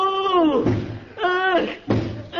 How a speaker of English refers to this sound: Hey, mister, what you doing? What you banging your head against the wall for?